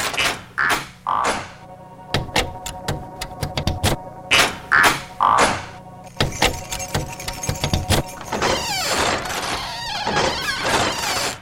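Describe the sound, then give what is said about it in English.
Latchkeys jangle and scrape with sharp metallic clicks in a door lock as grown-ups arrive home from work at the dinner hour, a latch turning and clacking, followed by a longer rattling, rustling stretch of metal handling. “Time for the turning sound of latchkeys to echo throughout the land as grown-ups arrive home from work.”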